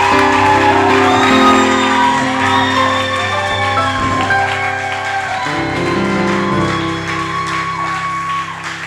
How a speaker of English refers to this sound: She's going to receive an award of recognition, and we're cheering. Come on, walk.